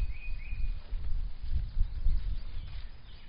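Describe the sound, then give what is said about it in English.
Faint birdsong outdoors, a couple of thin whistled notes early on and softer chirps later, set against a steady low rumble like wind or handling noise, with no one talking. “You can hear the birds.”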